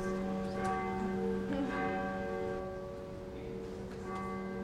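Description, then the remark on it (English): Church bells ring out at an evening worship service near New Year, with a rich, sustained tone, overlapping strikes blending into a continuous resonant hum with no voices present. “Even the bells go.”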